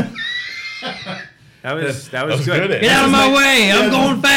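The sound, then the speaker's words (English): A voice mimics a 1920s goose horn with loud, nasal, wavering honks: a short first blast, a brief pause, then longer bending tones that swell and warble toward the end. “Yeah, that's his 1920s goose horn.”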